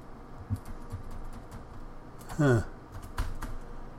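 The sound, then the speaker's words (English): Scattered, irregular clicks of laptop keys being pressed, with a few harder taps and a brief vocal murmur partway through, as someone tries the control and function keys on a laptop stuck on a blue screen. “Function keys aren't working.”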